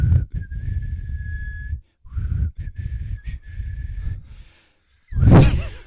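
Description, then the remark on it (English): Someone whistles a short melody in long, steady notes separated by brief pauses, over a low rumbling background, then finishes with a loud, breathy exhale. “What's the one he whistles on? Did he whistle on all of them?”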